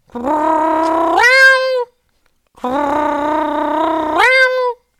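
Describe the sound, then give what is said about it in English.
A person imitates a cat's yowl with two long, drawn-out wails, each sliding up in pitch near the end before cutting off, separated by a short pause. Loud, nasal and harmonically rich, with no other talking. “Yeah, and it was constantly, it was this, like, all day for 3 days.”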